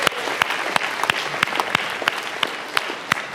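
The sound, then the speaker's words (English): A crowd at a church claps steadily in a sustained round of applause welcoming newcomers, dense overlapping hand claps with a few sharper, louder claps standing out, no voices. “So can we give a round of applause for our newcomers and people who haven't been here for a very long time?”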